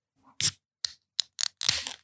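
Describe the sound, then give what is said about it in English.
A beer can is handled with a few sharp metallic clicks and crinkles, then a short burst of fizzing hiss as the tab pops open. No one speaks. “I guess I should actually open a beer.”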